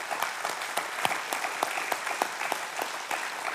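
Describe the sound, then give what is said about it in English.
An audience applauds steadily, a dense wash of many hands clapping at an even, moderate volume with a few sharper claps standing out, and no one speaking over it. “So I want to applaud you for what you've done.”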